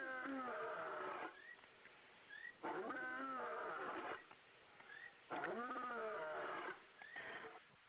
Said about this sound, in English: So if you've never heard an actual leopard or lion roar, that was one.